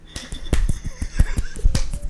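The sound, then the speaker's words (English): A rapid flurry of soft, wet slaps and squelchy thuds as wet hot dogs are dumped onto the ground with a microphone held close to the ground, landing in an irregular cluster with no voices. “You put the microphone close to the ground, and then you just dump all the wet hot dogs on the ground, and they're...”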